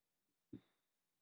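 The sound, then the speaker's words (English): A single sharp sneeze bursts out abruptly and fades within a moment, with near silence before and after. “I'm gonna sneeze.”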